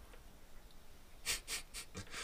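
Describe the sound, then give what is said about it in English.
A mouth-made fart noise: a quick run of about five breathy, sputtering bursts, fairly loud and hissy, coming after a second of near silence with no talking. “Yeah, I don't know why I made a fart noise.”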